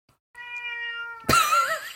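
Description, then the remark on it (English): A female cat meows, a steady drawn-out cry that suddenly turns louder and wavering near the end, with no one talking. “Hi, kitty.”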